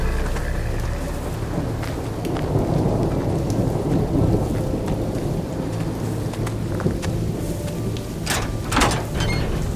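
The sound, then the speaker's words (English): A thunderstorm: steady heavy rain hisses throughout while deep thunder rumbles and rolls, with sharper crackles near the end. No voices are heard. “The storm has knocked out all our power.”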